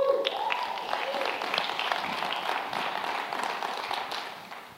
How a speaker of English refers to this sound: Give them a hand clap.